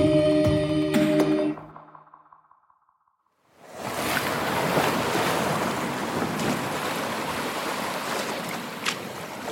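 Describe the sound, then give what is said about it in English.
Ocean waves wash steadily around a boat at sea, out of sight of shore as it grows dark and foggy, a broad continuous surge with wind noise, following a brief tonal musical sting that fades into a moment of silence. “We've been out on this godforsaken water for hours and I still can't see the shore.”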